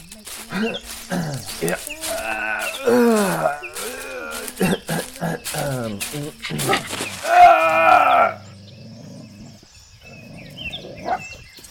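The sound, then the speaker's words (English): A dog that came out of nowhere snarls and barks aggressively, a loud burst of harsh, strained growls and yelps for several seconds before it drops off to a lower, quieter rumble. “That dog just came out of nowhere.”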